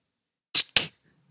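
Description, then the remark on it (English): Two quick, crisp snipping sounds in a row from a scissors sound effect, bright and hissy, like a pair of scissors closing twice, followed by a faint low hum and then quiet. “That was cut supposed to be scissors.”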